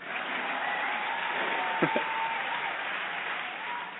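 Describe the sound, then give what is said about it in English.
A canned applause sound effect from a 2-year applause button: dense, steady clapping and light cheering fills the whole stretch at an even level, with a couple of sharp knocks briefly popping out midway. “get a nice 2-year applause button.”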